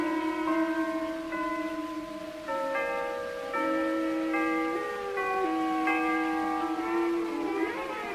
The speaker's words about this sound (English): Hold on, boys. The chimes are going to play.